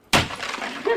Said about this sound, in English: Now we knock something. The sledgehammer was used to punch holes in the walls of Kuhn Hall, which, when finished, will be the new Fort Meade Education and Resiliency Center,